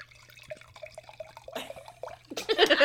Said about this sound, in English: That's wine pouring. Little ASMR wine.